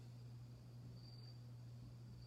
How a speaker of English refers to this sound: Yeah, I know, the crickets, right? It's really quiet where I am. There's this real stillness, particularly in the evenings. That's really sweet.